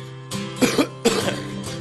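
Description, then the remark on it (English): A smoker coughs in a few harsh, raspy bursts, two heavy hacks close together and a third starting at the end, heard over a faint steady hum. “Lying in the arms of the good Lord coughing, I'll have to put this cigarette out.”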